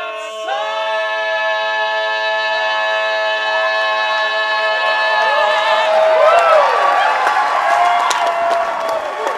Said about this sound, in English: Just come off stage to rapturous applause, as you've just been hearing.